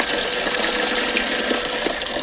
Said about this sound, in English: Here's Matthew Broderick taking a pee.